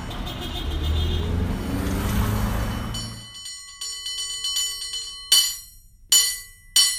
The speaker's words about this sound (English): there are cable car bells in the background.